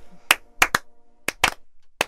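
A slow, uneven clap given after a recited Christmas poem: about eight sharp hand claps, some landing in quick pairs with gaps between them, over a faint low murmur.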